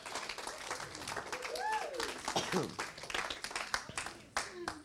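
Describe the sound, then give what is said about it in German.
An audience applauds Jesus with dense, steady clapping throughout, while voices call out and cheer over the noise of many hands. “Komm, lass uns mal Jesus einen Applaus geben.”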